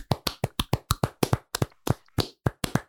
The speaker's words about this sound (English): And as we do at the end of every bracket, we're going to clap it out.